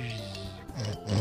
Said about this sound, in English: Was that a pig? Was that a pig on a skateboard?